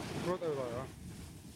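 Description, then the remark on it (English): Ocean waves wash steadily around a tiny boat being launched out to sea through the waves, with wind buffeting the microphone. A brief tonal whine or voice rises early on, then only the rushing surf remains. “Let's head out to sea, guys. And what's interesting is I guess the angle for going out, I would go right at the waves.”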